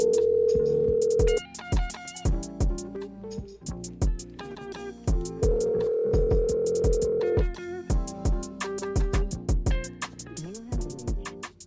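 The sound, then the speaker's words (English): A phone line's ringback tone purrs twice, in long steady bursts separated by a few seconds of quiet, as an outgoing call to the caller's mom goes unanswered, while punchy background music with sharp beats plays throughout. “But look, matter of fact, I'm going to go ahead and give my mom a call. Hopefully she answered.”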